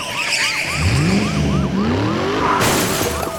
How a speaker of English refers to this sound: Somewhere about midway across, one of the deputies came ramming into the side of his truck.